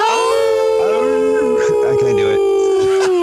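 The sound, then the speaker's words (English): Several human voices howl together on a count of three in a sustained, wavering note, imitating a wolf or dog howl, loud, holding the pitch for about three seconds before it trails off. “All right, we're going to set off here with a nice howl.”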